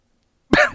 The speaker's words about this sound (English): Wow. Excuse me, I just burped and coughed at the same time. That's terrible audio.